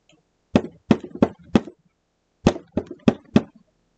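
Two bursts of four sharp knocks on a basement door, each group a quick uneven rhythm with a short pause between them; hard, woody thuds with no voices.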